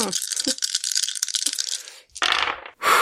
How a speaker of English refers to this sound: All right. That's 2 ones. That's and a 4 and a 5. Wait, you're rolling 4 dice or 2 dice? I'm rolling 4 dice.